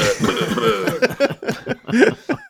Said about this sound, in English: I cough up some blood.